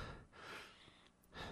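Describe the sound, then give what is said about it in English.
Shallow, short breaths from a man who has just been kicked by a guard come in a quick, uneven series of about three rasping inhales and exhales, fairly quiet, with no talking. “He's breathing, but shallow and short.”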